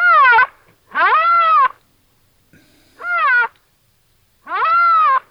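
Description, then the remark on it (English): A rhinoceros gives four short, high, squeaky calls, each a thin mewing whine that rises and falls in pitch, separated by brief silent pauses. No one speaks. “And that's a rhinoceros. As big as that animal is, it makes that little tiny little sound.”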